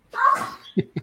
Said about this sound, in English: Bless you.